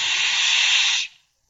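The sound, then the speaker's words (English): A loud, steady hiss from a bad telephone connection, like static on the line, holds evenly for about a second and then cuts off abruptly into silence. No one speaks. “are you hissing me?”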